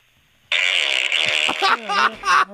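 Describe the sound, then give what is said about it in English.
A loud, buzzy fart-like raspberry blown against a fist, starting abruptly and sputtering for about two seconds, with a brief voiced wobble near the end. “that was a fart.”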